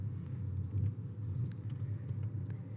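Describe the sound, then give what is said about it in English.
A steady, low engine rumble fills the inside of a car moving at 8 miles per hour in traffic, a constant droning hum with faint higher ticks and rattles scattered over it and no voices. “I'm now going 8 miles per hour, so I might stop the recording soon.”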